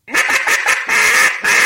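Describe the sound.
A duck call blows a hen quack sequence: several quick, loud, nasal quacks in succession, then drawn-out slower ones, without speech.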